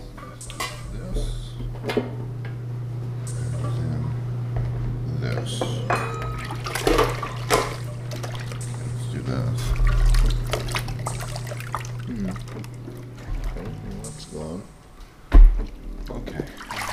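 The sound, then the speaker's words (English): Rocks and then gravel are poured into a jar, clattering and rattling in a busy run of clicks and clinks, over a steady low hum, with a brief voice and a louder knock near the end. “You put in all the rocks, and then you pour in as much gravel as you can.”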